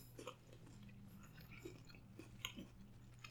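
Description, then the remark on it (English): Chewing of a crunchy cannabis chocolate bar, with a handful of irregular crisp crunches over a steady low hum and no talking. “Oh, it's crunchy, but delicious.”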